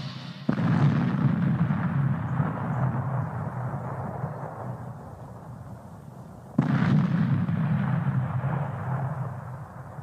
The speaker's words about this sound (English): The robot's electric discharge is going to detonate the primer cord.